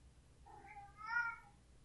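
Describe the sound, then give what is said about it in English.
A smart speaker plays a cat meowing twice in quick succession, the second call louder and more drawn out, with a rising then falling tone, heard alone over a faint low hum. “Alexa, open the box of cats.”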